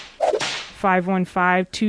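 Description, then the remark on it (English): A quick whip swish and crack, followed by three short, bright tonal blasts in a broken rhythm, loud, with no talking. “So that's the Zip Whip line.”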